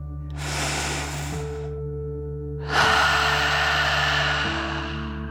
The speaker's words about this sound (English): Breathe in through your nose, filling up your belly, and then out through your mouth, pretending you are breathing fire like a dragon. Ready? Deep breath in and out.